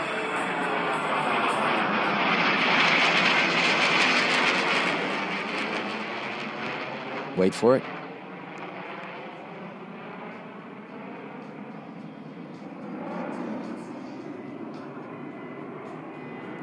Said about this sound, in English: You just got to hear this thing. This is the stealth bomber flying over. Yeah, we listen to the cars because we're old. Here it comes. Sounds like a regular jet, right?